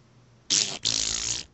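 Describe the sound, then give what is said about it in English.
A man blows a loud, wet raspberry with his mouth, imitating a fart in two sputtering bursts with a brief break between them. “He made fart sound.”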